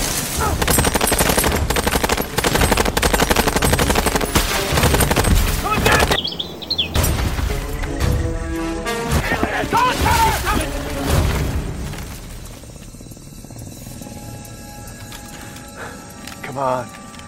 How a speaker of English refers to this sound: I know. And see, gunfire.